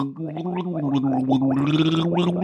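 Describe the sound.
A voice gargles water while trying to speak in a fish voice, giving instructions in Aquan, producing a continuous bubbly, wobbling drone with a low hum and warbling pitch bends throughout, loud and steady for the whole stretch.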